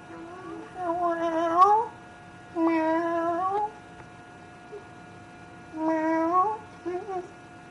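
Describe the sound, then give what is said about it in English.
Three drawn-out, wavering meows spaced a second or so apart, fairly loud, apparently a human voice imitating a cat rather than a real animal, in a listener's message from Minneapolis. “the kitty cat from Minneapolis, and I love reading, meow, and I have one question for you”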